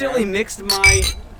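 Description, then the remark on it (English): Glasses clink together in a toast, a couple of bright ringing taps, with people talking over and around the chime. “So, cheers to... old memories.”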